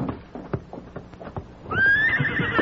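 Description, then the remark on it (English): As men mount horses, hooves clip-clop in a steady, brisk rhythm for a couple of seconds, then a horse lets out a loud, high whinny that rings over the continuing hoofbeats. “Now, you fellers, get on horses. Yes, we're mounting.”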